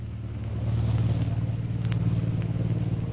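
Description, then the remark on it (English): An airplane engine drones steadily as the plane prepares to take off, a loud, low, throbbing rumble that swells over the first half-second and then holds constant, with no voices. “Jungle Jim and Shanghai Lil are standing near Bhutan's hut watching a plane that is about to take off.”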